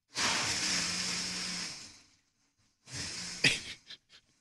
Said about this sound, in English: So why don't we get the, can we get the blender going? Yes, we can. These are his Frosé Rosé Springtime Cocktails. Here we go. Let's push the on button.